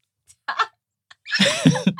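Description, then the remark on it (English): An exaggerated 'monkey yawn' by a man: a few short breathy puffs, then a drawn-out, loud voiced groan whose pitch wavers and slides before breaking off, with no speech. “If I bring up this, sorry, if you're not watching videos, he's doing the internal monkey yawn phase thing, but it's okay,”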